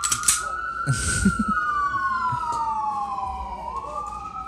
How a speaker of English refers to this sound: It's two ambulances and a fire truck. It's probably a car accident.